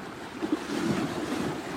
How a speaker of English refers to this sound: Let's breathe in the energy of the waves.